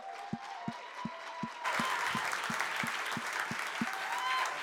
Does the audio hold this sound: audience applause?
yes